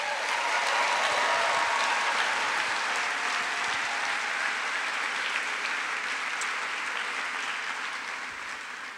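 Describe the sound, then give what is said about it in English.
An audience breaks into sustained applause to thank the event's sponsors, a dense wash of many hands clapping at steady loudness for several seconds before gradually tapering off toward the end. “And now, please join me in your favorite round of applause to make their hearts feel like gratitude, to say thank you to our sponsors.”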